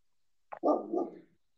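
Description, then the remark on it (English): An angry dog lets out one harsh, drawn-out bark, preceded by a quick sharp yap, fairly loud with no other sounds around it. “Is that a dog? Yeah, it's an angry dog.”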